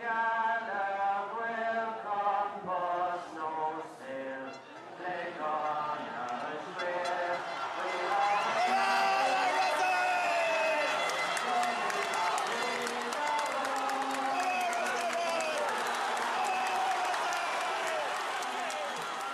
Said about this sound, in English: Despite the rain, there's a huge turnout for the Connacht final. A large crowd of people, all with different stories.